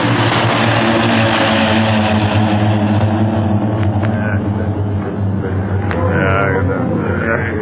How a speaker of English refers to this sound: Okay, but don't move. No one must move until those planes are out of sight. Boy, oh boy. I thought we was going ashore when that one plane nosed down toward us.